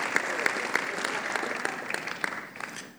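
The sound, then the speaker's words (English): A church audience claps together for visiting pastors and executive council members in a steady, sustained round of applause, the claps falling into a fairly regular rhythm before tapering off slightly at the end. “Clap for them.”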